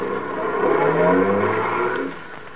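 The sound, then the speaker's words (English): A hailed taxi cab's engine revs up as it pulls away carrying a passenger, a steady motor drone climbing in pitch for about two seconds before easing off. No one speaks. “Taxi. Hey, taxi.”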